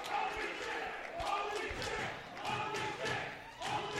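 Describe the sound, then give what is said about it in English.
A large wrestling arena crowd roars and reacts in a steady, dense wash of noise as a wrestler does a moonsault from the second rope that knocks everybody off their feet, punctuated by several heavy thuds and slams, with shouting voices mixed into the din. “Knocks everybody off their feet. To the amusement of the crowd here.”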